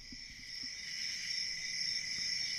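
A steady, high-pitched trill of crickets chirping continuously, fairly loud, with no voices, like a stock 'awkward silence' sound effect.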